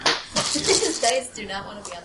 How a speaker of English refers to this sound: Dice do not want to be on the table. We just have too many dice for this size table.